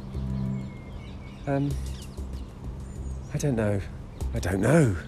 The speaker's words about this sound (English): There's a crow in the kiddies play area, playing on the swings. He's not playing on the swings. It might not even be a he.